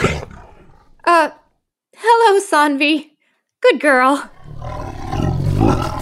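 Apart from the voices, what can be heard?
bengal tiger roaring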